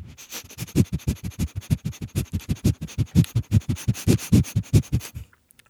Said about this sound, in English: That's when I bring my dogs on. Yeah, the mouth sounds and the noises.